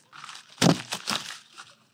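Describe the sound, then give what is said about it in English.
Paper being crumpled, a crackly burst of crinkling that peaks sharply then continues in a few smaller rustling crunches before fading out. “Whoa. That's a lot of paper.”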